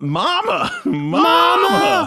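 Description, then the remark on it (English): A man's voice imitates the heavy breathing of a large man with two loud, drawn-out groaning exhales, strained, the second longer than the first. “Heavy breathing of a large man.”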